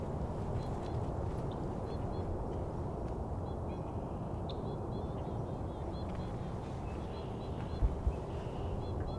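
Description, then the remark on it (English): White-winged crossbills, one flying over and another calling, give repeated short, high chirping calls, often in quick pairs, scattered throughout over a steady low rumble of background noise. “Here we go, white wing crossbill. One flew over, another one's calling.”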